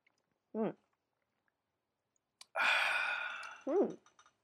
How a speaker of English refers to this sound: Ooh, I just had a sip of that IPA. What'd you drink? The Puffed Rice Chinese Pale Ale by Master Gao.